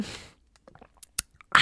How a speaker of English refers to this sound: I have my Stanley here. I'm gonna take a sip of water because I haven't drank water like all day.